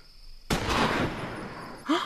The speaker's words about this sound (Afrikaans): Nee, Klein Jan skiet nie so sleg dat hy soveel skote nodig het nie.